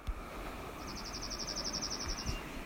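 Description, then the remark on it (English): A Dark-eyed Junco sings a rapid, even musical trill of about a dozen identical notes, lasting a second and a half, clear against a steady wash of outdoor background noise. “This final clip was a Dark-Eyed Junco.”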